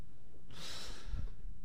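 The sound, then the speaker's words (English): A single heavy, drawn-out breath right against the microphone, a rushing, airy hiss with a soft low puff of wind noise partway through. No one speaks. “By the way, this is ….”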